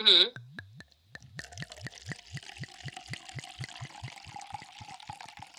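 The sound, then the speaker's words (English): Wine glugs out of a bottle into a glass, poured right next to a microphone: a rapid series of gurgling pulses that quicken into a steady liquid splash lasting several seconds, loud and intimate. “I'm going to pour the wine right by the mic.”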